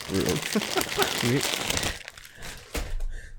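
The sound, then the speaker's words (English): Loud paper crinkling and rustling of an envelope being torn open to reveal the winner of a Cyberpunk 2077 giveaway runs through the whole moment with brief sharp tearing bursts, while people talk briefly at the start. “The envelope, please.”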